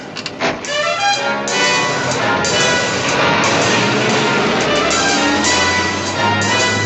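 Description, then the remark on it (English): A heavy garbage truck's engine roars and whines as it pulls away, a loud, steady rumble with rising mechanical tones and no voices. “Will you get this garbage truck on out of here?”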